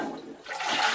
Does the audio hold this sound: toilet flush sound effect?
yes